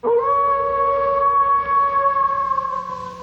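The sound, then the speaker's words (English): A person imitates a wolf howl, one long sustained tone lasting about three seconds and rising slightly in pitch. It is loud and alone, with no other talk. “So if you have nothing else to say, you can just howl and scamper off.”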